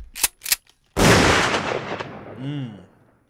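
Two quick sharp gunshot cracks, then a much louder booming shot that rolls into a long reverberant decay, with a brief rising-and-falling tone near the end.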